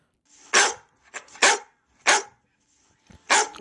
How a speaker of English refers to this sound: yep, DJ's being chased by a dog.